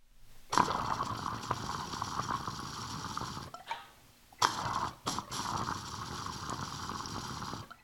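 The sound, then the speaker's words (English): Loud, rough bubbling from water churned through a smoking rig as it is revved, churning steadily for a few seconds, pausing briefly, then resuming with the same rapid, rattling gurgle. No one speaks. “I like to rev them, you know, rev up the rig, like shred the water to pieces, make even more tiny bubbles.”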